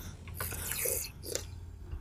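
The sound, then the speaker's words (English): A few quiet slurping sips of water, short wet hisses and gulps clustered in the first second and again briefly after, with no talking. “I can hear you sipping the water.”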